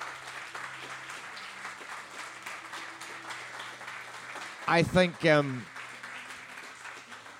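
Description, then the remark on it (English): A crowd applauds in a steady, dense patter of many hands that runs throughout, and a voice briefly speaks over the clapping near the end. “hopefully you can hear from the warmth of that applause, folks, how you've impacted and how you've spoken from the heart.”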